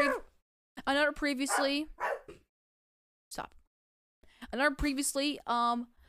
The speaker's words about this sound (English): my co-host … is playing with my dog, which is very annoying